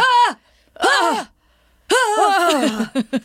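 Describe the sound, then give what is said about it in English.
A voice imitates a man's loud, strained yelling during sex: a long wavering cry, a pause, another rising-and-falling yell, then a sustained cry breaking into short, sharp bursts at the end. “I have to say, though, when he puts his penis in her and he starts making these yelling sounds.”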